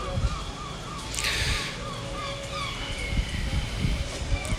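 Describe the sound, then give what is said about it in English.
Seagulls call repeatedly, their wavering cries rising and falling over a steady outdoor rumble, with a brief bright burst of noise partway through. “There's some seagulls.”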